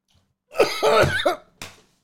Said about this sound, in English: I can't be cool Stone Cold when I'm coughing. I'm too old for Stone Cold.